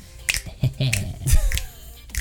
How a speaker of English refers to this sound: Snap my fingers, because it's time to go.